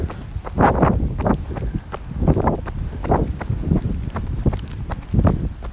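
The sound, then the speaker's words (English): Running footsteps in waterproof shoes splash through puddles on a wet, chilly morning run in a park, in a steady rhythm, about seven wet, slapping strikes over several seconds, with a low rumble of wind buffeting the microphone underneath. “You can probably hear the puddles.”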